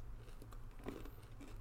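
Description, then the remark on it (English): Crunching of a hard-shelled M&M candy: a few crisp, brittle bites scattered over a second or two, fairly quiet, with no talking. “So you crunch it instantly?”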